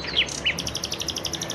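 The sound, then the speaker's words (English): A bird calls outdoors in Jerusalem in the early morning with two quick bright whistled notes, followed by a rapid, evenly spaced series of high chirps, set against a soft quiet background hush with no voices. “It was still quiet outside, and save for a honk here or there, it was just me and the birds. Oh, listen to that one.”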